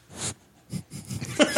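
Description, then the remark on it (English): A pet sniffing right against the microphone, a few quick breathy snorts and inhales in uneven bursts, loud and intimate with soft rustling between them. “Sniff this microphone.”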